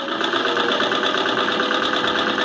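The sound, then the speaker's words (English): A sewing machine runs continuously at a steady speed, its motor whirring under a rapid, even mechanical ticking. It is fairly loud, with no voices. “Oh, it's a sewing machine.”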